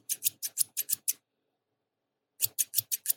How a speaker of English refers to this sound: Something really satisfying about the sound of scissors.